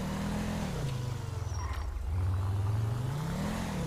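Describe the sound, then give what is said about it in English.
The engine of an NC State unmarked Taurus patrol car in a video game revs steadily, its low drone rising and falling in pitch over a few seconds, loud with no one talking. “We have a NC State unmarked Taurus patrol car with created out of a Blaine County one.”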